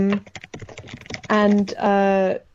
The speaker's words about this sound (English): I'm gonna look her up, sorry. So if you hear me typing, that's what's happening.